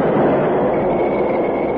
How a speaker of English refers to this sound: Skidding over the rails with smoking brake shoes, the big engine and tender slid past the wide open gates